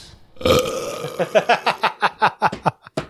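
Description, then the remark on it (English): A loud burp that starts as one long gurgling belch, then breaks into a quick rhythmic series of about ten short croaking burps, ending with one final pop. “Insert burps here.”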